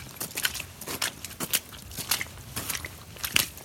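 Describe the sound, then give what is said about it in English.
Wet, squelchy sucking sounds of squelching in mud repeat in an uneven rhythm, like boots stepping through thick mud, moderately loud with no talking. “And squelching in mud too.”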